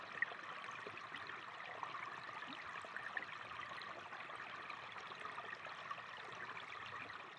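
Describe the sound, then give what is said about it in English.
A steady, continuous rush of flowing stream water of the River Lee or its tributaries, its babbling hiss holding even throughout with small gurgles and splashes, moderately quiet, with no voices. “Water has long been associated with healing and health, and at a time when we need a source of calm and restoration, the River Lee and its tributaries are simple yet invaluable sources of well-being.”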